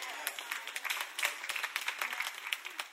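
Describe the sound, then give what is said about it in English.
About three people in a church audience clap sparsely and unevenly, a thin patter of scattered handclaps rather than full applause, with soft crowd murmur underneath. “I think y'all need therapy because only three people clap.”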